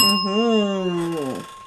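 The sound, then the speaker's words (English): A small bell rings once and its bright metallic tone hangs on steadily, while a voice makes a wordless, wavering vocal sound underneath that trails off near the end. “That's a ring bell to that.”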